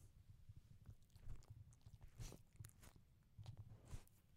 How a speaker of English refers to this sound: It was Charlie chewing a bone, but he's like, why Charlie's is there just going off on this bone. Holy shit, just in front of me.